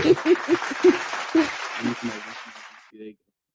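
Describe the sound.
A short burst of applause from a few people, clapping steadily for about three seconds with whoops and voices mixed in, then fading out.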